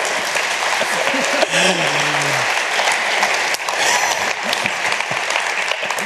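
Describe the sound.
Steady, dense audience applause fills the whole stretch at an even loudness, with a brief voice or whoop rising through the clapping early on.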